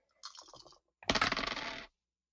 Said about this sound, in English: All right, roll that dice, I guess. Do I roll two or three? Three dice.